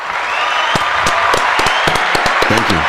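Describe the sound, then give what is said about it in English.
A crowd applauds loudly and steadily, dense clapping filling the whole stretch, with a few sharper claps standing out and a faint voice surfacing near the end. “Round of applause for me.”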